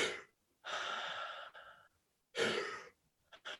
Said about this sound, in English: So the Wim Hof breathing is very interesting because it's this.